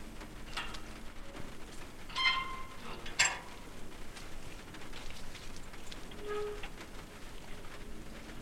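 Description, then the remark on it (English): Heavy, steady rain patters continuously on soaked leaves, a dense hiss of drops with a few louder splashes and drips standing out now and then. No voices. “The gate opened by a pause in what seemed like unrelenting rain, the leaves soaked and mulch slipping the ground from under the feet of any hurrying someones or somethings in the dark”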